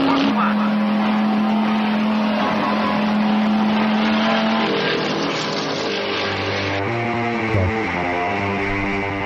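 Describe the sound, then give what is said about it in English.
Race car engines roar loudly and continuously during a three-way battle for first place, with the number 17 car slowing down, their pitch rising and dropping as the cars shift and pass. A voice is partly buried beneath the engine noise. “And now the three-way go for first place. Now the 17 car starting to slow down.”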